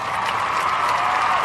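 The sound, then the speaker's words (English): A steady wash of crowd applause with faint cheering mixed in, dense rapid clapping holding an even, fairly loud level throughout with no voices standing out. “Hey, I just want to give you a round of applause for a Travis Etienne take.”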